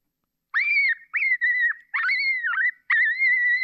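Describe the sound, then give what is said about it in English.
A fawn distress call played on a caller: four loud, high, wavering bleats in quick succession with brief pauses between, sounding slightly electronic, with no talking. “It's a fawn in distress.”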